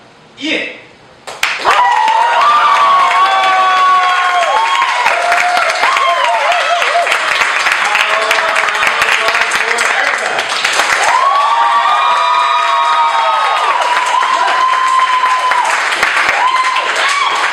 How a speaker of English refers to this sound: Is that a proper enough applause for you, sir?